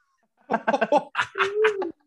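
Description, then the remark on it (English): A cat meows: a quick run of short chirping calls, then a longer, drawn-out meow that holds steady before cutting off. No one talks over it. “Y'all can't see it, but we have a kitty on the camera.”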